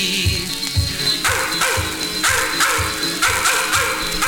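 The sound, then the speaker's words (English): A pack of hounds barks and bays in loud, overlapping bursts, one call tumbling after another at a quick, steady pace with no voices in between. “The grass is dancing wildly in the meadows to the tune of hounds a-baying from afar.”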